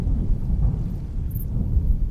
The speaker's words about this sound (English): The woman waited for the thunder to subside before responding.